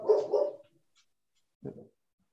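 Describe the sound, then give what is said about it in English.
A dog barks twice in quick succession, pauses, then lets out one more bark, moderately loud with no talking over it; the dog is barking in response to another dog barking outside. “So I think we've got she's got somebody outside barking and she's responding.”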